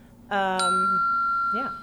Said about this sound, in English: He rings the bell all the time. It's distracting, I know.